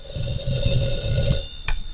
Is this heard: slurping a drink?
no